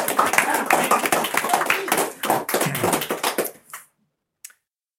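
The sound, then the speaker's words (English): A crowd applauds a speaker with dense, steady clapping for several seconds before it tapers off and fades to silence, followed by one faint tap. “Round of applause for Deanna.”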